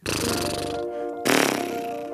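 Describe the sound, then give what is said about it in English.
A person imitates a horse with a loud, buzzy lip-flutter snort, sustained for about a second, then a second stronger burst right after, with no words spoken. “For horse, we can do either neigh, or we can make this horse sound, which is kind of fun to do.”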